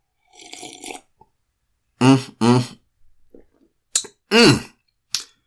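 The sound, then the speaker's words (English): A soft slurping sip of coffee from a cup, followed by a few short, voiced sighs of satisfaction and faint swallowing sounds, with brief quiet gaps between them. “So I have to take a sip of my coffee.”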